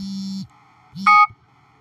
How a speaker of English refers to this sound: I can't mute that alarm. And this is the time I actually supposed to got up.